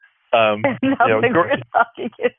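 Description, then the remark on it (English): A voice speaks in short bursts over a telephone line, sounding thin, tinny and slightly distorted, with the low bass and high treble stripped away. “Even if it is distorted and through a phone and sounds like we're talking in tin cans.”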